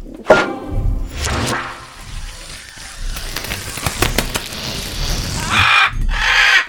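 parrot squawking

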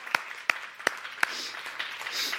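church audience applause

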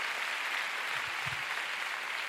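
audience clapping

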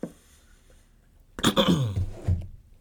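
throat clearing

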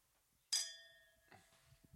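wine glasses clinking together

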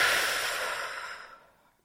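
slow exhale

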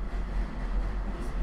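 subway train rumbling past

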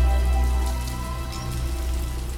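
light rain falling

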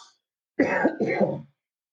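cough

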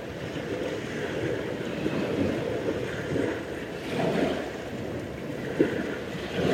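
ocean waves

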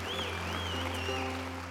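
audience clapping hands

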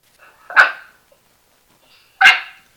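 dog barking

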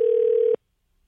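phone call ringing out

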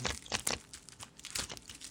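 tarot cards being shuffled

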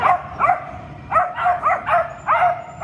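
puppies barking

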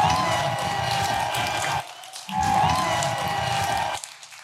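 audience clapping

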